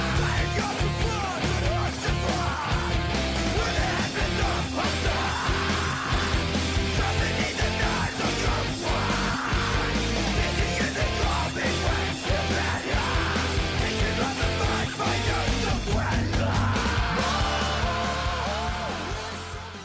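A dense, loud rock song with a vocalist screaming harshly over driving guitars and drums, sustained throughout before the mix dips slightly at the very end.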